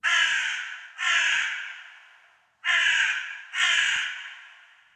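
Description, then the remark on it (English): A crow outside a window caws four times, loud, in two pairs of harsh, drawn-out calls separated by a short pause, with no talking over them. “This segment is called Crow.”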